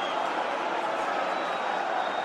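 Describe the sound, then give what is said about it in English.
A large stadium crowd roars in celebration of a late Chelsea goal against Stoke City, a header by Giuliano Belletti past Thomas Sorensen, a dense, steady wall of cheering that stays loud and unbroken throughout, with no single voice standing out. “Something to cheer about at last.”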